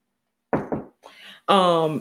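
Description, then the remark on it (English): Two quick knocks on a wooden surface, a short pause apart, followed by a brief breathy sound and then a voice. “And let me knock on wood.”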